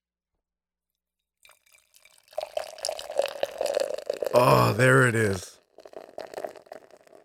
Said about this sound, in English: Oh, fucking beer pouring into a glass mug like God intended. Like the Trappist lords before us. Right. Alrighty, holy smokes. So we fucking legit got a hazy here.